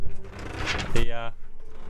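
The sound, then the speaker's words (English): A door creaks and clunks through a quick open-and-close, with a brief squeaky hinge-like tone near the end, amid busy background noise. “Excuse those door noises.”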